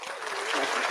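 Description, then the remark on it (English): A brief burst of applause welcoming a guest: many quick, overlapping claps blending into a dense, bright patter that holds at a steady level for the whole second, with no voices. “Clapping, I'm telling you, I'm like Beery Godmother.”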